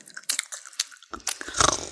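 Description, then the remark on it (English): Crisp crunching and chewing of food, with sharp bursts of biting spread irregularly over a couple of seconds and a louder crunch near the end. No one speaks. “Plus, people might not know, I can't handle people eating or listen to people eating or chewing or gulping or slurping or sucking on any food of any kind.”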